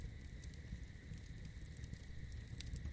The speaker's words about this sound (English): But for now, just continue to enjoy the campfire and all the surroundings as you continue to relax more and more.